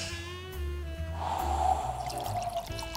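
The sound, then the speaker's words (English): Rosé wine is poured into a glass in a steady, gurgling stream lasting a few seconds, its ringing tone rising as the glass fills, with no voices. “He's in with Hamish now, pouring.”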